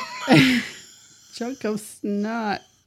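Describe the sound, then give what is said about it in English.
A single rough, raspy throat clearing rings out, followed after a short pause by a few brief voiced vocal noises, almost like wordless syllables. “I gotta clear my throat like that.”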